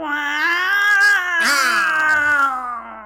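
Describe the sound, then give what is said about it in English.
A person loudly imitates a cat's meow in one long, drawn-out wail that bends in pitch midway, sounding strained, with no other talking. “Meow at them really loudly.”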